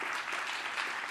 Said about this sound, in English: Amen. Come on, give God a strong hand clap.